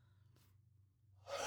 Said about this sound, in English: Sorry, I was yawning. You were getting cozy.